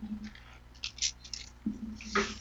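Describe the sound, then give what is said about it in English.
Keys being pulled from a back pocket: a few short, bright metallic jingles with soft fabric rustling, fairly quiet, with a low hum underneath and no one speaking. “Sorry, I had keys in my back pocket. They're digging in my ass. They had to go bye-bye.”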